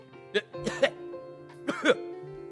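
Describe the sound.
A person imitates a young man coughing after stepping outside a church: three harsh, throaty hacks, one short and then a tight pair of two, over a faint steady background hum.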